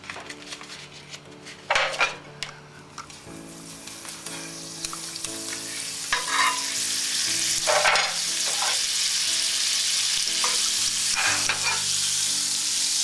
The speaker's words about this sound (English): And as long as I have my margarine ready, I'm going to use my margarine. My frying pan is hot, and I'm going to add my margarine quite a bit.